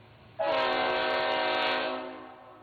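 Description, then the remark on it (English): A train horn sounds one long, loud, steady blast that starts abruptly, holds for over a second, and then slowly fades, with faint rail rumble underneath and no talking. “This one was a train.”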